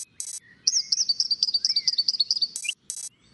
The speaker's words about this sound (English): Oh, you know, I think there's one more you should hear. The bird is right over there.